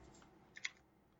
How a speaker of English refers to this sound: I can hear Paul's keyboard here.